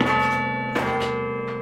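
Carillon bells in a church bell tower, 43 bells each wired to a broom-handle baton and played by Schaefer, ring out in a short phrase, each new strike landing on the lingering hum of earlier notes, so the tones blend into a rich, sustained, steady-volume wash with no voices.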